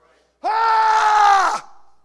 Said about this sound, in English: you're hoping the scream stops them just long enough that you can slash and hack